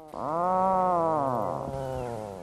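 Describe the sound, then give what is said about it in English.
An Atlantic puffin gives one loud, low, drawn-out groaning call, rich and buzzy, its pitch sagging slowly downward over about two seconds before fading, with no voices present. “That unmistakable call, used by pairs to signal to each other at their breeding sites and to communicate with their pufflings, yes, that really is the name given to baby puffins, is perhaps not the sound that one might expect a puffin to make.”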